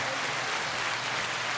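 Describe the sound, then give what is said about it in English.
Steady applause from a group, a dense, even wash of many hands clapping that holds at a constant moderate level throughout, with no voices standing out. “There, she gets applause.”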